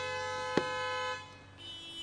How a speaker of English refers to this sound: I appreciate the honks, but I'll never feel like that's a good thing. It feels like when someone honks at you, they're telling you to stop doing whatever it is you were doing.